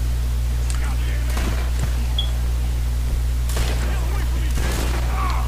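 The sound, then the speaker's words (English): Rapid video game gunfire crackles in several sharp, loud bursts spread across the moment, layered over a steady low electronic hum. “Yikes! Gunshots!”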